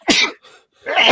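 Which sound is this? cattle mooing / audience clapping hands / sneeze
sneeze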